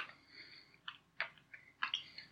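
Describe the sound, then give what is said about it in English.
Quiet crunching of a crisp cream-filled cookie with sugar granules in the cream being chewed, with a few sharp, irregular bites spaced under a second apart and no talking. “Why is the cream crunch? Are you sure it's not just like cookie that's stuck in your teeth?”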